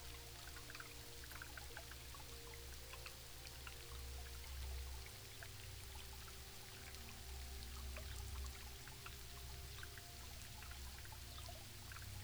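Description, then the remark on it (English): Water flows steadily and continuously, a soft, even rush with small splashes and trickling drips scattered throughout, heard on its own without any voices. “Now, drift and float as you listen to the sound of the water and the birds.”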